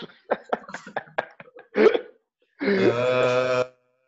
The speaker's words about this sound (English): And I know you're like somewhere like in the store, you know what I mean? And like, I'm about to sneeze.